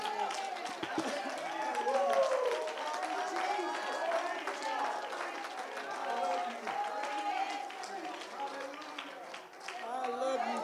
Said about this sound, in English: Let's clap our hands.